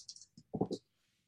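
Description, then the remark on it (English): A quick flurry of hard plastic clicks and clatters as dice are rolled, rattling and tumbling across a surface, fairly quiet, lasting about a second with no voices. “Dice. Let's find out.”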